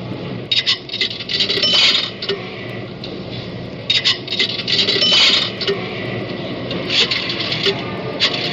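Nickels clink and rattle as they drop into a pay phone, a few bright metallic jingles in bursts over a steady mechanical hum, with no one speaking.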